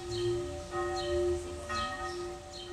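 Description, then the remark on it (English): Church bells ringing out with rich, sustained metallic tones, new strikes landing every second or so over a faint hum of outdoor background noise, heard outside an apartment window in the Neukölln district of Berlin. “Church bells outside the window of my flat in the Neukölln district.”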